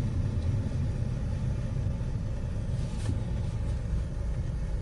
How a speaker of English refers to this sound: I'm not dealing with that traffic.